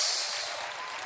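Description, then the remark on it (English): A crowd applauds as a show of honor for the May 14th birthday of their prophet and founder, a dense, steady wash of many hands clapping at once with no individual claps standing out, holding at an even level throughout with no voices. “It's a good idea to clap and to...”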